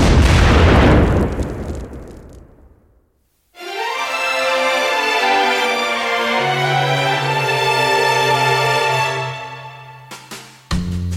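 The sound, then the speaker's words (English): An explosion sound effect for a mock self-destruct bursts out loud and booming and rumbles away over a few seconds, then a sustained buzzing, tonal musical sting plays with a low drone beneath it. No one speaks. “This podcast will self-destruct in 5 seconds.”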